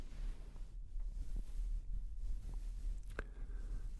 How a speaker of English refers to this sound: Some lemon water and listen to the white noise playing in the background.